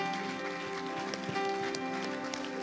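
A church audience at Grace Church claps hands to the Lord in a dense, continuous patter of overlapping claps at a steady loudness, with sustained musical tones held underneath.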